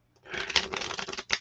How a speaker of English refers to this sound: And granted, that's not a problem right now because no one's shuffling my cards except me.